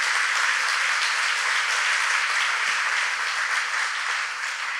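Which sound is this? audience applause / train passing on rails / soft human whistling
audience applause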